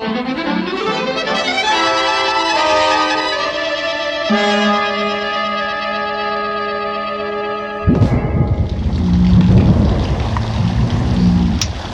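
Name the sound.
thunderstorm with heavy rain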